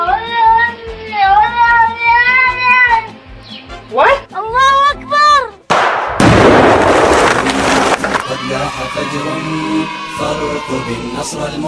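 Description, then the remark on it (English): A recording of a cat from Syria meows repeatedly in long, wavering, drawn-out cries over a steady rhythmic background, followed by a sudden loud burst of noise and a dense, cluttered din. “And last but not least, there's this creepy little guy known as the ISIS terrorist cat from deep in the heart of Syria.”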